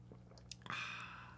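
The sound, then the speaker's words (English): A quick sip of water: a few soft wet mouth clicks, then a brief slurping gulp and swallow, with no talking. “Sure is good water.”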